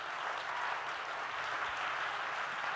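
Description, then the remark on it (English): A worship-service crowd claps hands in praise to God in a steady, dense wash of applause that holds at an even, moderate level throughout, with no voices standing out. “Can we clap our hands to him and give him praise?”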